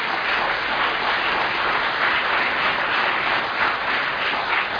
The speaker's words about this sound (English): Give me a clap if you're willing to rise to the occasion.